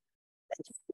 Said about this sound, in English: Let's just sneeze again.